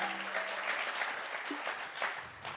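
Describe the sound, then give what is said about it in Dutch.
Steady audience applause for the musicians, a dense wash of many hands clapping at an even, fairly loud level throughout, with a faint low hum at the very start and no one speaking. “Give these guys one more hand. Laten ze nog een applaus geven.”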